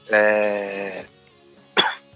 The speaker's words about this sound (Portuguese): Desculpa, pela tosse, tô meio doente.